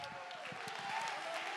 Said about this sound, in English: Somebody lift your voice like a trumpet and clap your hands and give God the praise.